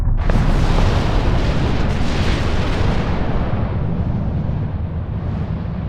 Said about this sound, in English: A fireball lit up the horizon. The rumble hit the glass a few seconds later, making the whole room tremble.